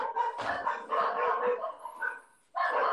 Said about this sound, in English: These fucking dogs. What do you have, a fox hunt going on over there